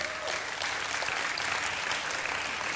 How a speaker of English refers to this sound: And guys, you have a really kicking worship band. They deserve a round of applause, actually.